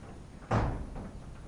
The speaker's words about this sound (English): And now, as we hold attention here, would you please close the door, windows, and the doors, everything.